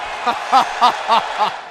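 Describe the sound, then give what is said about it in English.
A WWE arena crowd reacts, during a promo about Brock Lesnar, with a rhythmic chant: five strong, evenly spaced vocal bursts rise over a steady wash of crowd noise, with no single voice standing out. “And you can the reaction of the crowd is like everybody in that building knows the rumors.”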